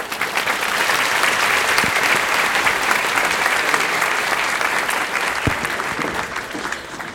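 Steady, sustained audience applause fills the whole stretch, a dense wash of many hands clapping at an even level, with a couple of sharper individual claps standing out.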